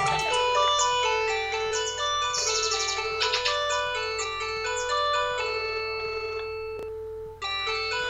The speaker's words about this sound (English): Okay, and my phone's ringing, so I just answer the call and say hello as usual, and then hang up.